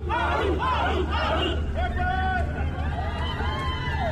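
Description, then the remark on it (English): A crowd of hundreds at Avatū Wharf, Rarotonga, Cook Islands, seeing off travellers departing on board the Lady Samoa 4, calls and shouts together in a steady, loud swell, with drawn-out wavering cries rising above the dense babble throughout. “There were waves of emotion at Avatū Wharf as hundreds gathered to see off the community.”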